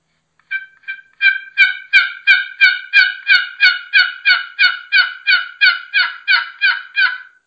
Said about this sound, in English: And I got a box call right here. I like to just do a sequence like this. Just kind of soft with the box call, see if anything answers.